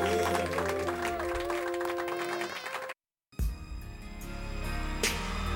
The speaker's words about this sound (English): Come on up in here. Clap your hands.